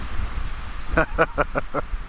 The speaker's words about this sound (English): It's hell of a windy now, by the way, so it'll be interesting to hear how this comes out, if it even comes out at all.